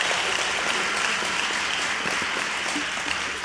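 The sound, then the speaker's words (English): An audience claps together in steady, dense applause, a continuous bright patter of many hands that holds at an even, fairly loud level throughout, with no voices standing out. “Come on, clap like you know what I'm talking about.”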